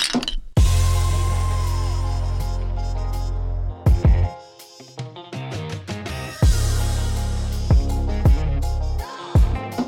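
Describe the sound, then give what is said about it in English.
Drinking glasses clink together several times in a toast, in quick, bright taps, fairly loud, over a steady humming tonal background with no one talking. “But we drinking. Cheers.”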